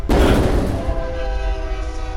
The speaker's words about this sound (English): There's a train coming.